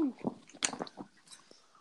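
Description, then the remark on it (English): A dog named Beans makes short, irregular wet snuffling and mouthing noises, with soft shuffling between the bursts. “My dog came to say hello and join the podcast.”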